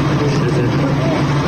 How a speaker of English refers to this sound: This bus is in Philadelphia, Pennsylvania.